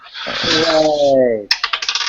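After a drawn-out vocal cheer, dice are rolled for initiative in a tabletop game, hitting a table with a sharp clack and skittering to a stop in a quick series of fading clicks, clear.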